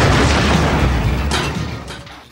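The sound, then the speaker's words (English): An explosion sound effect in a movie trailer: a loud, booming explosion with heavy low-end rumble, followed by a crackling burst and debris-like bursts that fade out over about two seconds, no voices present. “This is one of those with the I'm going to kick your explosion sound bits, which I think has been used in various other cinematic trailers as well, but to great effect here.”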